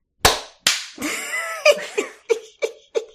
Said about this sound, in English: Great. Okay, so we're going to do the clap and then room tone, okay? Okay, clap and then room tone, okay. Okay, so 3, 2, 1.